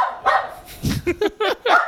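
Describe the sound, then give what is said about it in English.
A small, angry dog yaps sharply in a quick run of about five or six high-pitched barks, loud, with no talking. “That's not a dog. It's a angry little person.”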